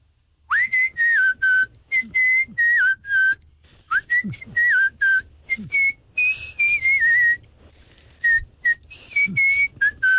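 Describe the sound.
A person whistles a tune for game show contestants to identify. Clear sustained notes glide and step between pitches in short phrases, separated by brief breaths and pauses, with no talking.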